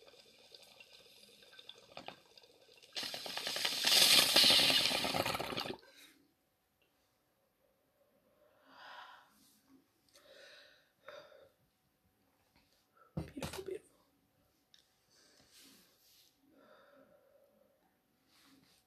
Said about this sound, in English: I'm smoking it out of my Cheech Bong, the clear one. Cheers.